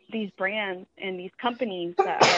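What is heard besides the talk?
a sneeze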